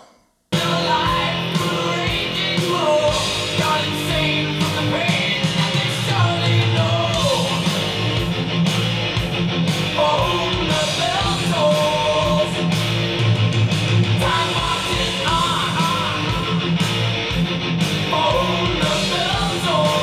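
A heavy metal song plays loudly and continuously after a split second of silence, with a dense wall of distorted guitar and pounding drums filling the whole twenty seconds.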